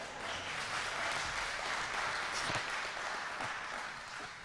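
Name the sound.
audience clapping applause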